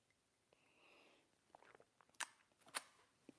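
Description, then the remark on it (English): Quiet sipping of coffee, with a couple of soft slurps and two sharp wet mouth clicks as the coffee is taken in and swallowed. No one speaks. “It's called the simultaneous sip, and it's going to happen now.”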